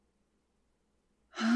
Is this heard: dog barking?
no